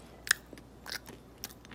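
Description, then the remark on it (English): Crunchy chewing of a blazing mango flavoured candy straw: a few sharp bites and crackles spaced unevenly over a couple of seconds, with quiet pauses between. No one is speaking. “Chew it. Don't suck on it. Chew it up.”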